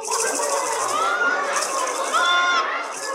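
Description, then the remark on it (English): A baby's rattle carried by the three French hens, shaken steadily for a few seconds, a dense, bright, continuous clatter with some faint squeaky tones woven through it and no voices. “The three French hens and their baby's rattle.”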